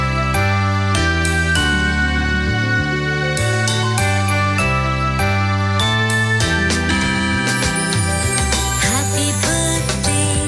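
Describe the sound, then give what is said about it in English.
Jingling bells ring through a bright, loud musical tune with sustained notes and a steady bass line, the shimmer growing busier toward the end; no one speaks. “Jingle bells. Here we go. Jingle bells.”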